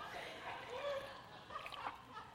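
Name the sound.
sipping water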